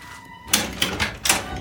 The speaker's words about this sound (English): It's okay. It's just the door.